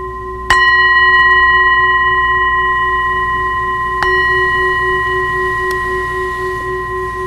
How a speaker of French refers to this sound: On entend la cloche, puis je sais, c'est la cloche.